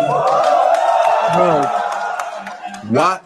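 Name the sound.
audience clapping and cheering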